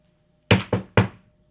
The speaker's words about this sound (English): And anyway, long story short is, I get a knock on my door.